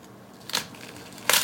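A knife cuts down through an onion being diced into small cubes, with two short, crisp crunches, one early and one louder near the end, separated by a faint quiet hiss. No one speaks.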